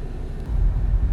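Steady low road rumble from inside a moving car in Texas, a dull continuous drone that swells slightly louder partway through, with no voices or distinct events on top.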